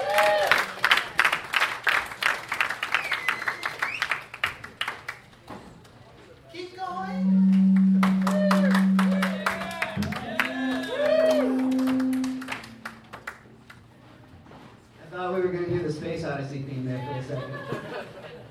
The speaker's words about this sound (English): I got some stuff to do, so let's get a round of applause for all the comics that came out tonight.